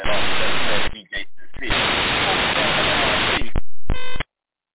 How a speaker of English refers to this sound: Always got that static at the end. I don't understand that